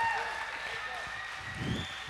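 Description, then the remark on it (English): A crowd at City Life Church claps and cheers steadily for the children being dismissed to Kids Church, a dense wash of applause with scattered whoops, swelling briefly near the end. “We get up for them every week because we get excited for them.”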